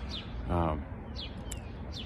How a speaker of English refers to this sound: Well, this doesn't feel like February, does it? I got birds chirping in the background. The sun is shining. 40 degrees out here.